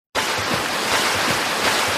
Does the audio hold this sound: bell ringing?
no